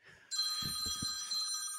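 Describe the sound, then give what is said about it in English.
A phone rings with an incoming WhatsApp call, a steady electronic ringtone starting abruptly and sustaining clearly, with a few soft low thumps like handling noise underneath. “I was going to say, the good thing I wasn't showing the phone number, but it's through WhatsApp.”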